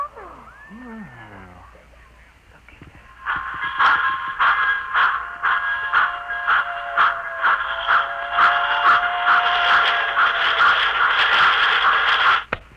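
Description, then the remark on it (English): A complete toy model railroad, reduced to the size of a cigar box and set in a suitcase, runs with a loud, steady motor whir and a rapid, regular clicking rhythm, preceded by a few seconds of faint sliding whistle-like tones before it starts. “They run! Just like real trains!”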